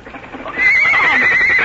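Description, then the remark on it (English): A horse, Bluegrass, neighs loudly, a shrill, wavering whinny that rises after a brief rustle and holds strong to the end, with faint hoof clatter underneath. “You guys, that horse.”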